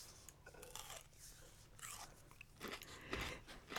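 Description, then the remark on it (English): Crisp crunching as someone bites and chews something brittle, with repeated sharp crackles in an uneven rhythm and no talking. “The sound of chewing is a wonderful thing.”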